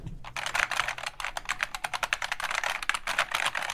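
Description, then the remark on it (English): Rapid, steady typing on a clicky mechanical keyboard, with crisp keystrokes tumbling close together in a continuous patter, with no voices. “You got a clicky key? A special clicky key keyboard?”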